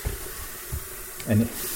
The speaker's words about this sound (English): He likes drinking water out of the sink. So I fill up the sink with water.